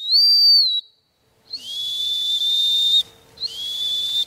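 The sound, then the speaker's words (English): A dog training hunt whistle, used to send a dog to search for a thrown training dummy, sounds three times, the first a short shrill blast and the next two long sustained tones with trilling warble, loud with no talking. “So that's my hunt whistle.”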